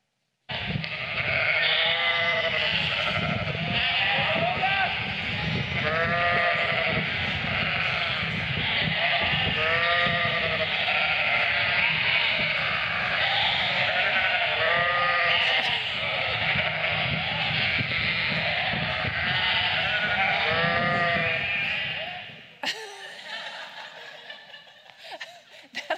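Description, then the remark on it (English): Several voices imitate sheep, overlapping wavering "baa" bleats repeated steadily for over twenty seconds, loud, with laughter mixed in before the chorus cuts off abruptly near the end. “So when you watch this video, I want you to get your sheep bah voice, okay?”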